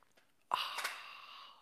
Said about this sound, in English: Join me now for the unparalleled pleasure of the dopamine of the day, the thing that makes everything better. It's called the simultaneous sip, and sometimes it's better if you have an actual cup of coffee. Go.